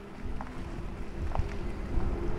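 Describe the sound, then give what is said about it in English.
A steady, low electric hum with a faint tonal drone, the pedestrian warning sound of a Cadillac electric vehicle driving down the block, mixed with soft rumbling road and wind noise; no one speaks. “we put that sound in so that pedestrians and others can hear that the vehicle is approaching”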